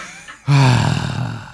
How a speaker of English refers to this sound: And then I died. Just one exasperated gasp.